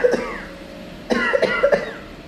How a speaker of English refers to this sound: At this point, though, you do start hearing a lot of coughing coming from Sister's almost unconscious body as she's like starting to dry fetus, sucking up dirt and stuff like that. Hey, hey, stop coughing.